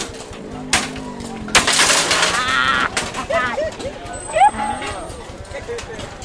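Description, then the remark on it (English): Sharp cracks and a longer crunching crash as children smash the screens of old computers on broad stretches of mud strewn with shards of glass, plastic and metal, with birds chirping and faint voices in the background. “On broad stretches of mud, Strewn with shards of glass, plastic and metal, children are shattering the screens of old computers.”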